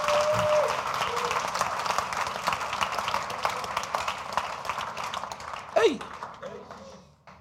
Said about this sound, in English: The clapping too is very free. Maybe when you clap for Jesus, it will be better.